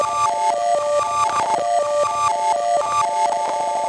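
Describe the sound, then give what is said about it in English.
A short fragment of audio recorded into a Time Safari loops over and over with a short loop length at a quick, stuttering rhythm, its tonal, buzzy timbre repeating evenly at a steady, fairly loud level with no voices. “And then I can play around here in the Time Safari with the loop length. Oh, wow. Or reverse it.”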